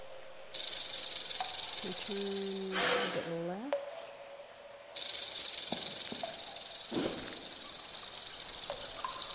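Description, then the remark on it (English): A snake hisses in a loud, steady, airy stream that cuts out briefly midway and then resumes. A short low voice-like sound rises beneath it early on. “There's gotta be a way around that snake.”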